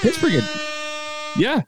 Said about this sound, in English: Air horn it all you want.